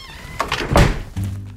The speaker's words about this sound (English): Now, I'm just going to open the front door here, and you're going to follow me out.